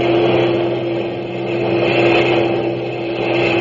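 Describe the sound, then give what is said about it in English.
Heavy trucks of a long German motor convoy roar along a road in a loud, continuous engine drone with a deep steady hum, swelling slightly throughout, with no voices. “A few minutes later, she heard a low, throbbing roar, and around a bend in the road, the first heavy trucks of a long German motor convoy roared into view.”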